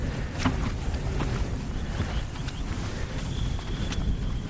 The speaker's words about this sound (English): A bit windy, heading up a slope.